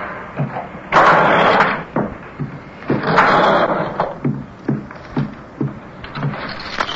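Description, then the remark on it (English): A door thuds shut, followed by two long, loud scraping drags and a series of bumps and knocks as the door is barricaded, like heavy furniture being shoved against it. “They'll have to break the door down to get me out.”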